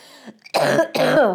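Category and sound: human body sound, coughing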